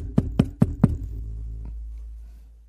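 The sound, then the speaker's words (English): Four firm, evenly spaced knocks on a door, loud with a hollow low thump, followed by a faint knock and a fading low rumble. “Is that someone knocking in the cellar?”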